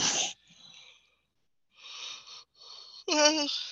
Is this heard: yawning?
yes